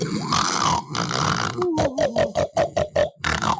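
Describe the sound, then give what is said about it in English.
A voice imitates a woman's loud snoring: a long, rough, raspy rattle drawn out for over a second, followed by a quick burst of about eight short, throaty snorting pulses. “It is I snore like this. No, she snores like this.”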